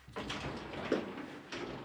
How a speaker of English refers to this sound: There's that fucking sliding door again. I don't know why we got that installed.